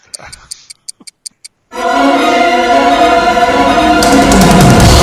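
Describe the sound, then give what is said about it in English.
A clock ticks briskly, about seven sharp ticks in quick succession, then a loud, sustained roaring blast with a dramatic, brassy tone suddenly takes over and fills the rest. “What's the ticking I'm hearing? That's a doom clock.”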